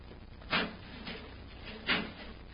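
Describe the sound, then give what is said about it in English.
A heavy metal door is worked open with two solid, clanking thuds about a second and a half apart, loud, over a low background hum with no talking. “There's a metal door, Hap. Let's see if we can open it.”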